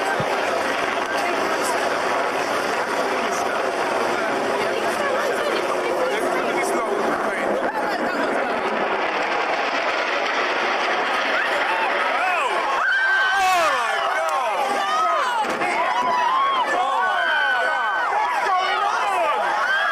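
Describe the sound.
A crowd on a harbour screams and shouts in a dense, constant roar of overlapping voices, with shrill, wavering screams rising and falling more sharply through the second half.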